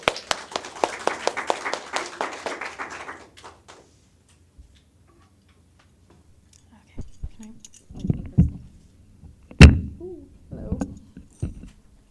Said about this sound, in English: So if you can just give a round of applause to